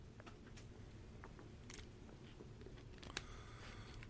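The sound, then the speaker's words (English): Someone sips water: soft wet mouth clicks and small gulping noises scattered over a steady low hum, with no one speaking. “I'm going to take a sip of water, cool down.”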